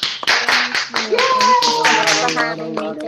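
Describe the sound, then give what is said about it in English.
A group of people clapping for a special guest in a steady burst of overlapping claps for about three seconds, with excited voices calling out over the applause. “Let's give her a clap.”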